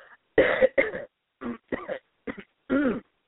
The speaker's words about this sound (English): Excuse me, everyone. Obviously, I still have the cough.